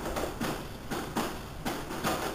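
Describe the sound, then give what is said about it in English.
A steady series of hollow knocks on a door in a low-quality video, spaced about half a second apart in a loose rhythm, set against a constant background hiss with no voices. “Another shitty video quality, but knocking on a door.”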